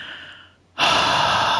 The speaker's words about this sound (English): And no matter where you are right now, I want you to take one large deep breath.